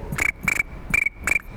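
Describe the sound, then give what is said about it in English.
A voice imitates chirping crickets with four quick, evenly spaced bursts of a thin, high trill, clear with no talking. “That's a better cricket than I do.”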